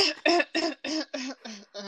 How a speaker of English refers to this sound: Why is she coughing? Is she okay?